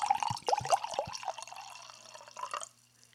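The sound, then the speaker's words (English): A drink is poured into a glass, opening with a few sharp splashy glugs and drips, then settling into a steady, bubbling trickle that stops abruptly. No one speaks. “Will you hand me that glass?”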